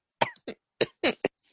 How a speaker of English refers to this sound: There, now. See, you're coughing already.